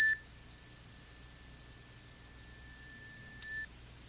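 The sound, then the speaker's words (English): A bright chime tone, used as a trigger and anchor for entering a meditative trance state, is struck, its clear high note ringing on steadily, then struck again a few seconds later with a brief sharp attack. No talking, only faint low background hum. “Well, I use that chime three times, and that's my anchor.”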